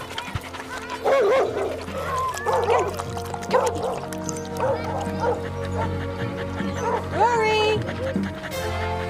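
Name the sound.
dog barking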